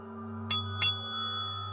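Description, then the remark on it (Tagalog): A shop counter call bell in an antique shop is struck twice in quick succession, each ding bright and ringing, with the second tone lingering over a steady low hum. “Umalingaw-ngaw ang tunog ng call bell.”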